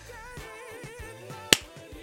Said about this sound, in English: That was a delayed clap